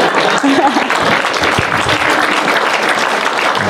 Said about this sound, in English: By the way, you all are the judge there, so that applause was sort of the meter